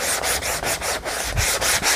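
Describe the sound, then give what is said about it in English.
A sanding block scrubs back and forth across a project's surface to scratch it and add wear and tear, in quick, steady strokes, a loud, gritty rasping repeated about eight times with brief pauses between passes. “I love these sanding blocks. They're awesome.”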